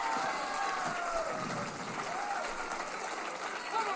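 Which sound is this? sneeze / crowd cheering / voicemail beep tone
crowd cheering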